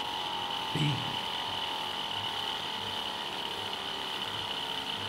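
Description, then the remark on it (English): A hot gas engine, heated to about 700 degrees centigrade and running forward on its own after its electric motor is switched off, turning heat into mechanical energy, runs steadily with a continuous mechanical whir and hum with a faint rhythmic pulse, broken by one brief clatter near the start. “The machine now runs in the forward direction as a hot gas engine.”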